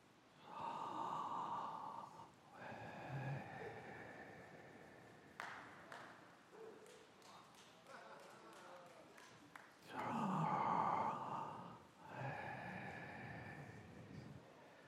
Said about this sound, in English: I just got to tell you that the name Yahweh was to be said without moving your tongue or letting your lips touch each other. It was literally a breathing sound, an inhale and an exhale.